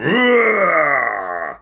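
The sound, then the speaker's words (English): A person imitates a big growl: one loud, sustained voiced roar lasting over a second, rising briefly in pitch and then sagging lower before cutting off. “Just as the ringmaster entered, he let out a large growl.”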